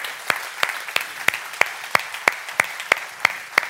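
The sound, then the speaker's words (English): Audience applause for veterans on Veterans Day, with a steady crackling wash of hands and a few sharp, evenly spaced claps standing out at about three per second. No one talks over it. “And so can we just clap for our veterans who have served our country for real?”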